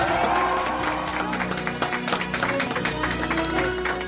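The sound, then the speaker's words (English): A large studio audience bursts into loud, sustained applause with some cheering as comedian Todd Glass is welcomed to the program, dense clapping filling the whole few seconds, with a faint musical tone running underneath. “You know where you hear a little bit of a round of applause?”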